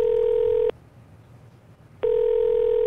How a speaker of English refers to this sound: You gave us her number, and I was calling, ringing there. That's a lot of numbers